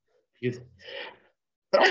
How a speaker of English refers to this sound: Bless you.